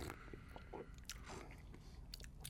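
Wet, squishy chewing of a cocktail onion, with a few sharp crisp bites and moist smacking sounds spread over a couple of seconds, no talking.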